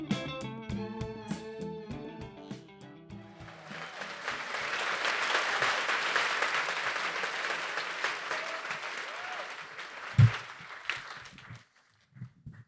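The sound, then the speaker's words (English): A few seconds of tonal music give way to an audience applauding a film at a film festival in New York City, steady and dense for several seconds with a single thump near the end, then tapering off into quiet. “We could keep clapping, but we should start talking, I think.”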